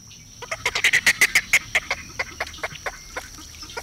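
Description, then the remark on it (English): A snowy egret gives a rapid run of about twenty short, harsh, clucking calls, loudest near the start, then spacing out and softening toward the end, with no voices. “The beauty of the small, slender, snowy egret is in its fine white feathers and long, lacy plumes.”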